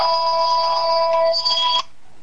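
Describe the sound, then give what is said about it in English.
A phone rings with a bright, steady electronic tone that holds for almost two seconds, then cuts off abruptly. It is loud and alone, with no talking over it. “I forgot to turn off my phone.”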